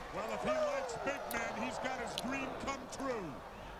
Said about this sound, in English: Irish whip by Vader in the corner. Big chop takes Vader down.